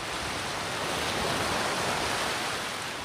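Ocean surf washes ashore on a tropical beach on Boracay, a jungle island in the Philippines, in a steady, continuous roar, with gentle swells in the hiss of breaking water. It is loud, with no voices.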